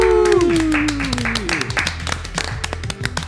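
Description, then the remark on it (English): Scattered applause at a live recording of The Geekies awards show at the Rebel Bank in Walthamstow, East London, with irregular, sharp claps continuing throughout, modest rather than roaring, opening with a falling whoop-like tone. “Crowd goes wild. Okay, maybe not so much.”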